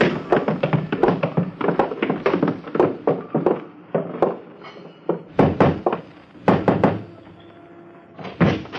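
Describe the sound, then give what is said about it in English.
Footsteps go down cellar steps while the walker holds on to the rail: a long run of uneven, hollow wooden thumps and knocks, some louder than others, with short pauses between clusters and no talking. “You're going down cellar steps, so hold on to the rail.”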